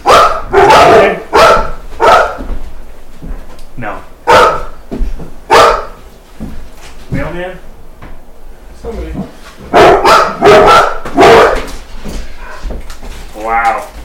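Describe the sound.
Dogs bark loudly and excitedly in repeated bursts, clustered at the start and again near the end, with a quieter stretch between and faint talking mixed in underneath.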